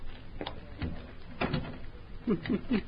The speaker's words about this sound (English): In just a moment, I'll unlock the door. Turn on the lights and close the door.